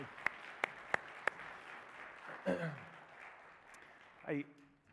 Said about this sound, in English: Thank you so much, worship team. I think it's fair to give them a round of applause this morning.